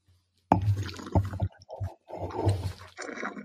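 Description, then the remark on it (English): Wet slurping as someone sips an oaky, buttery-smelling wine from a glass, a series of short gulps and mouth sounds over about three seconds, with no talking. “Let's have a sip.”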